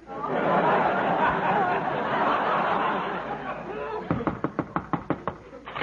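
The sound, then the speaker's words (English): A crowd laughs and murmurs loudly, then a rapid run of about ten sharp, loud knocks pounds on a door at a steady, insistent pace, someone beating on Mr. Costello's door. “This time he beat the door in.”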